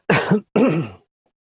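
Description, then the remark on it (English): Two loud, close-up coughs in quick succession, each a harsh burst lasting under half a second, recorded right against the microphone with silence after. “I probably shouldn't cough like that into the microphone, but you so can edit it out.”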